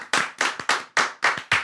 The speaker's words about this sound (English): Oh, am I supposed to stop? We're no, we can just clap.